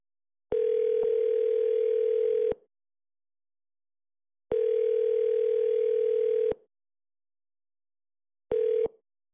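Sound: telephone dial tone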